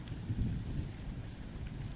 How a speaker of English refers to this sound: As these arcing lightning bolts careen across the sky, and then the thunder, 1, 2, 3 seconds later, reverberates through the camp.